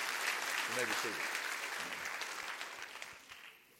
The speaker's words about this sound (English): Clap your hands real big.